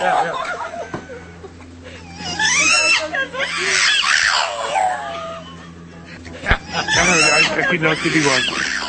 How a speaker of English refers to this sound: You ever see that dog on the internet that actually was going, oh, roar, roar? Here it is. I have it right here.